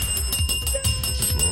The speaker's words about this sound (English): Oh, and look. Look, my bell is here.